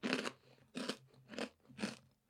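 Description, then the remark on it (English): Four loud crunches from a crisp snack being chewed, evenly spaced about half a second apart, each a dry crackling burst with brief quiet gaps between. “You get kind of addicted to the crunch.”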